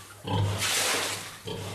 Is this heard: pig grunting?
yes